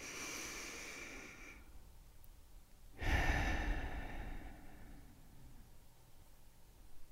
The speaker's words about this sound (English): Let's take a deep breath in and a deep breath out.